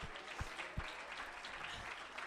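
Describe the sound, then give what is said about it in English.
A church audience claps together during a service in a steady, dense burst of applause, with a few louder low thumps punctuating the continuous patter of many hands. “Let's clap our hands unto the Lord.”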